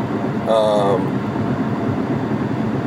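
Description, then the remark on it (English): A heavy truck rumbles close by, a steady low engine drone that holds throughout, with a brief higher-pitched whine rising over it near the start. “Yeah, you can hear this truck right next to me probably.”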